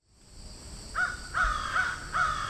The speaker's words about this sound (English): There are a number of crows flying about here. The scientific name is corvus. They're pretty impressive birds. This one on the sidewalk is pretty big.